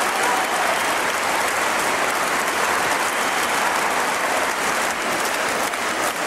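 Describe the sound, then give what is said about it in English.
A concert crowd at Horowitz's Moscow performance applauds steadily, a dense, even wash of clapping that stays loud and unbroken for the whole stretch, with no voices standing out. “His niece met him at his Moscow performance, along with this rousing crowd.”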